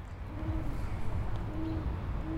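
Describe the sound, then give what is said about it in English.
An owl named Charles, at his nest, hoots repeatedly in low, steady tones, a few evenly spaced calls heard over a constant rumbling outdoor background. “Charles has an insane physical beauty and amazing, beautiful hoot.”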